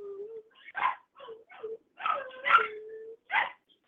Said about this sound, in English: ignore the puppy playing.